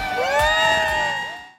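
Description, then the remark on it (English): A crowd cheers and whoops loudly outdoors, high excited voices overlapping in a sustained roar that holds steady for over a second before cutting off abruptly. “Let's show our crowd.”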